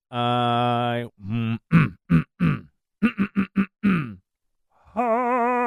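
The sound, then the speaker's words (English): A voice makes a run of throaty, grunting throat-clearing noises: a long, low growl, then several short rhythmic huffs and clipped bursts, ending with another drawn-out groaning rasp. “Now you made me want to clear my throat.”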